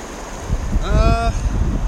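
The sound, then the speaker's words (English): A steady rush of flowing river water fills the whole moment as water is taken from the river with a hand-pumped filter, with a brief, bright squeaking tone rising out of it about halfway through. “How's it feel to be taking from the river with the filter the same way the river took from you with the pot?”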